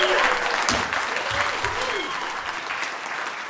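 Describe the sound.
A crowd claps steadily and loudly, a dense, even patter of many hands, with a few faint cheers and voices mixed into the sustained applause.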